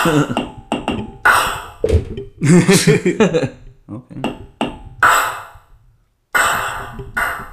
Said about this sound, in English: Did you hear that? It was like an echo. You might have accidentally hit it again. Yeah, I don't know. Maybe I don't know. It's a pretty cool toy.